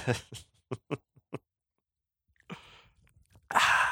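A sip of Sweetwater's Hazy IPA beer: a few short clicks and taps, a brief silence, then a wet slurping sip followed by a loud, breathy exhale. No one speaks.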